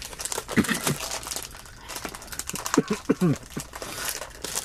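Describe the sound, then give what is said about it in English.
Plastic packaging crinkles and crackles in bursts of sharp, papery noise as it's torn open, with short bits of voice mixed in partway through. “Well, I'm usually the one who can't open them up.”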